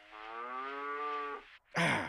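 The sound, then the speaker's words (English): A person imitates a cow, giving one long, sustained low moo that holds steady for over a second, followed by a brief gap and a short, louder burst of voice. “A cow says...”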